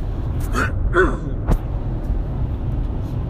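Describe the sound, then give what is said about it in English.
A few short, sharp coughs caused by pollen in the air come in quick succession over a steady low rumble, the last one a brief hard burst, followed by the continuing background drone. “Excuse me, I keep coughing and stuff.”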